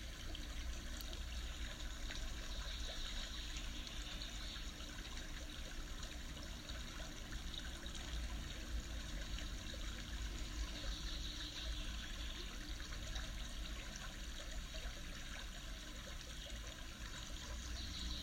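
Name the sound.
flowing stream water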